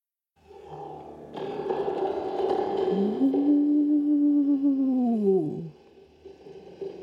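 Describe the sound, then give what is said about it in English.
A thunderous, booming roar of a furious giant echoes out of the darkness of Fingal's Cave in Scotland, swelling up and holding for several seconds, its deep growling pitch bending upward then sliding down before fading, with no talking. “But all of a sudden, he heard a thunderous roar echoing out of the darkness.”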